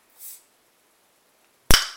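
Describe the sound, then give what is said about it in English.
A beer bottle cap is pried off with a dancing-lady bottle opener, taking two attempts: first a soft, brief hissing scrape, then after a pause a sharp, bright metallic pop that rings out briefly. No one speaks. “Took 2 attempts to get the cap off.”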